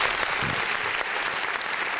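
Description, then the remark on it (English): Canned applause from a soundboard: a steady, dense wash of clapping that holds at an even loudness for the full two seconds, with no voices over it. “They need a round of applause? Soundboard.”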